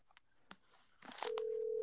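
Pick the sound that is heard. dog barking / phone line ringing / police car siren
phone line ringing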